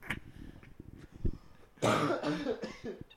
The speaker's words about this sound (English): I started laughing and coughing at the same time because I was just thinking about, like, how perfect he is for that role.